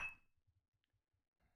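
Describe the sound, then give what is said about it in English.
A single bright clink of glasses in a toast with a 43% drink made in Tokyo, Japan, ringing briefly with a clear high tone before fading, followed by a few soft low thuds in otherwise quiet surroundings. “All right. Cheers.”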